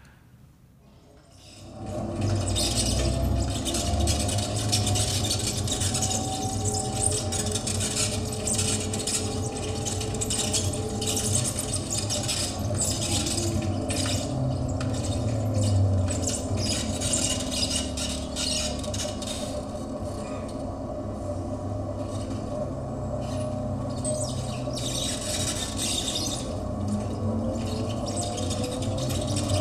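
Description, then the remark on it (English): Steady rumble of the 44 city bus to Ballard in Seattle, recorded while riding on it: a low engine drone with road noise and faint rattles, loud and continuous after a quiet start. “But anyway, this is a recording that Chris made of his ride on the 44 bus to Ballard in Seattle.”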